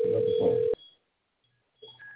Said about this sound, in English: Now you hear that phone ring